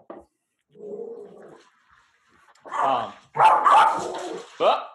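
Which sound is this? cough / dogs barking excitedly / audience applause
dogs barking excitedly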